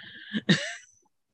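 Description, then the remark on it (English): A single cough breaks out in two quick bursts, a short catch followed by a louder, harsher hack that trails off, with no talking around it. “Yeah, and thank you for, you know, tolerating when my cough happened, but I'm so glad to have been with you.”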